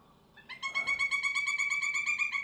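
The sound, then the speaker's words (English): A pileated woodpecker's long call: a loud, rapid, even series of ringing notes that starts abruptly and runs steadily to the end, with no other sounds around it. “And the long call.”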